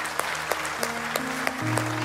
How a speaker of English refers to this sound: In Jesus' name, amen. Amen. Come on, let's give out a round of applause today.